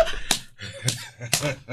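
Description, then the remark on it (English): Several sharp hand slaps of people giving high fives crack out at uneven intervals while people talk and laugh underneath. “Look, no table we can slap five.”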